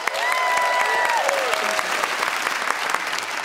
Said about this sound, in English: Thank you. I live in an apartment. Hold for applause.